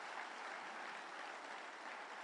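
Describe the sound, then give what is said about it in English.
A crowd applauds unto the Lord, dense overlapping claps forming a continuous, loud wash of sound with no pauses and no voices standing out. “Clap unto the Lord.”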